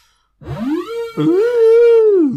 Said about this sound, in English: What's that noise? Is that your alarm tone? Yeah.